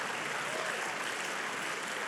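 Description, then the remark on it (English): An audience claps together in a steady, dense wash of applause, a clap of thanksgiving and praise to God, that holds at an even level throughout, with no voices standing out above it. “Come on, why don't we give him a clap of thanksgiving and a clap of praise because he cares.”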